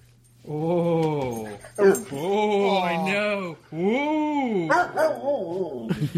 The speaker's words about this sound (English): Here's what he says. Listen to what he says. Break it down. Ooh. I love the dog. Love the show. Say it. Don't joke around. This is a time to be serious. Repeat what the dog's saying.